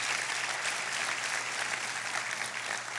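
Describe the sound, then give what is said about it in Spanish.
A church audience gives Jesus a round of applause, clapping steadily in a dense wash of many hands at a consistent, moderately loud level from start to finish, with no voices standing out. “Go ahead and give Jesus a round of applause.”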